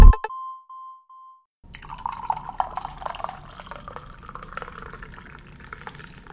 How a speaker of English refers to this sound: That coffee pour was a lie. It's usually a lie. It's usually a lie, not gonna lie.